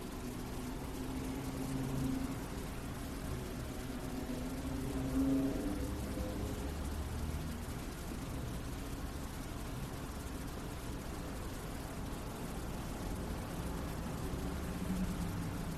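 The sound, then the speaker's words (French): A steady, low rumble of road traffic hums on without a break, with a faint engine drone rising slightly now and then. No one speaks. “Se laisser bercer, peut-être, même par le trafic.”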